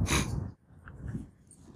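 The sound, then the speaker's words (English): A dog gives a sharp, noisy snort, followed by a second or so of softer huffing breaths. No one is speaking. “Hey, you doggy.”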